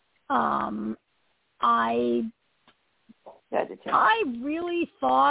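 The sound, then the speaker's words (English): A female dog whines in several drawn-out, pitch-sliding bursts, loud, with short pauses and a few faint clicks between them, and no other sounds around. “But yeah, see, dog's she agrees with me.”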